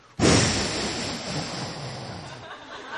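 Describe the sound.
A voice imitates falling rain with a loud, steady breathy hiss that starts abruptly and holds for about three seconds, fading slightly toward the end.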